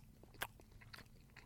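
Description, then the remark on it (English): Quiet chewing on a dense, chewy dog food treat, not crunchy, with a sharper bite near the start followed by a few soft, irregular mouth clicks and squelches, no voices. “Looks like some kind of dog food treat.”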